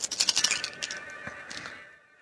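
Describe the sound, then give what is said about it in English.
Dice are shaken and rolled for a piloting check, rattling in a quick clattering burst, then a few scattered clicks as they tumble and settle, fairly quiet, with no one speaking. “Come on, dice. Be nice to me.”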